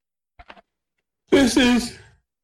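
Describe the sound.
A few faint clicks, then a voice imitates the massive snoring coming from Batwing: one drawn-out, rasping snort that swells in two pulses and trails off, under a second long.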